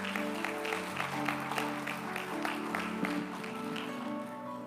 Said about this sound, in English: And let's just give them another round of applause and let them know how much we appreciate them.